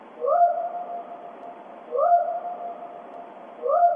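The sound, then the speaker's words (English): A loud, rising whoop call, a recording looped to repeat at steady intervals about every two seconds, each one sweeping upward then holding a sustained tone, clear with no talking. “This is just a random loud whoop that is looped.”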